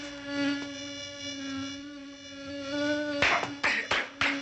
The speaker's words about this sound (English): But we dare not open that door until all three of these flies are dead.